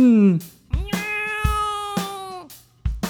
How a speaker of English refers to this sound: Ah, the cat's coming, the cat's coming. Run!